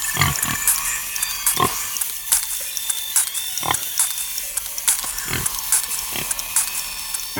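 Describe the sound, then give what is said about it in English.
Mechanical pig sounds: a string of short grunting oinks mixed with clicking, ratchet-like gear noises, coming in irregular bursts over a steady metallic hum, with no talking. “And it has mechanical pigs.”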